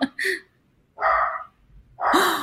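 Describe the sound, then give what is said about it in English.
The speaker's small dog gives three sharp, high-pitched barks, spaced about a second apart, fairly loud, with no one speaking. “There goes my little dog.”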